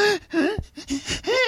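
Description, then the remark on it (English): A voice imitates gasping from taking a cold shower, a quick series of four or so sharp, breathy, voiced gasps in a row, fairly loud, with no other talk. “I'm just like gasping.”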